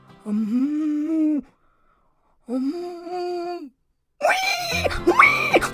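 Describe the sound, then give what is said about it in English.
A voice imitates a cow with two long, low, droning moos separated by a pause, followed by a harsher, strained vocal bellow that rises and wavers. “Try making a cow sound.”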